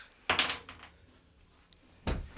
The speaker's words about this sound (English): All right. You swing this door open.